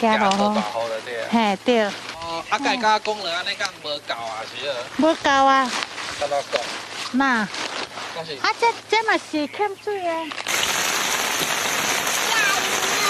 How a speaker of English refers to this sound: the rain got progressively heavier